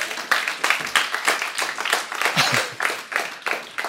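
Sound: audience clapping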